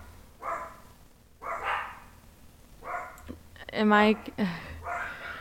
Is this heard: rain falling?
no